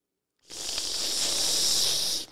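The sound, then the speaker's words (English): A voice imitates a man at a wine tasting in Germany sipping and aerating wine: one steady, airy hiss, like air sucked through pursed lips, lasting about two seconds at an even level before stopping abruptly. “And the guy would sip the wine, and he would go...”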